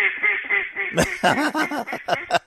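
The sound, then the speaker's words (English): A duck quacks repeatedly in quick, raspy bursts, loud, with a steady nasal call running underneath at the start before the sharper quacks come in a rapid rhythm. “Oh, yeah. It's still duck season.”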